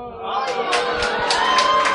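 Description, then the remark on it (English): A crowd reacts loudly to Whoppers candy being shown, with a steady mix of cheers and boos, overlapping shouts and whoops forming a continuous wash of voices for two seconds. “Oh, it really did divide the crowd. Now, everyone who is giving the thumbs down or the boo to Whoppers, we are not friends.”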